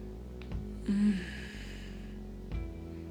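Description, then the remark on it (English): A single soft, drawn-out breath through the mouth or nose, lasting over a second, with a faint low hum underneath and no talking. “I'm breathing in and out as I give in to the yearning of my body.”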